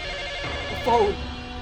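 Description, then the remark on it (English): An office telephone gives one short electronic ring, a brief warbling trill over a steady background hum, clear. “Every phone's dialing.”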